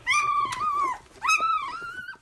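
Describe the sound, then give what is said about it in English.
Lola, a golden retriever caring for a litter of puppies, whimpers and growls, giving two drawn-out, high, wavering whines with a rough low undertone, no voices present. “At least for now, for this litter, Lily can rely on Lola the Golden Retriever to take care of her puppies as only a dog can.”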